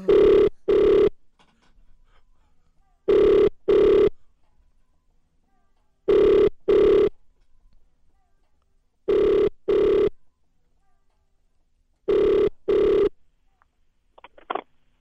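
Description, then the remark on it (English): A phone rings on an outgoing call to the fire department: five evenly spaced double rings, each pair of short tones repeating every three seconds, clear and steady with quiet gaps between. “Okay, it's ringing.”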